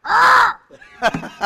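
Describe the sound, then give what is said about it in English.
A parrot screeches out the national anthem: one long, loud, harsh warbling note followed by a string of shorter, rasping squawked syllables with brief gaps between them. “We've even got a parrot that sings the national anthem.”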